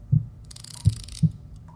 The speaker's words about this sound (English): Your heartbeat's starting to slow.